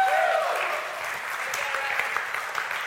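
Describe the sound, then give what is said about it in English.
A church audience at Providence claps steadily for a few seconds for a pastor who wiped up spilled water, a dense wash of many hands at moderate loudness, with a brief whoop or voice near the start. “Can you guys clap for the man or something?”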